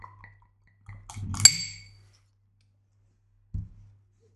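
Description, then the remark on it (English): A few light glassy taps lead into one sharp, ringing clink of glass that briefly lingers as amber Williams Brothers beer is poured from a growler into a held glass, then a quiet pause before a dull knock. No one speaks. “Can you hold the glass for me?”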